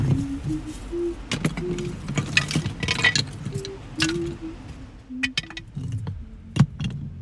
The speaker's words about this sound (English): she stacks up a wall of stones to cover the entrance to Coltrane's cave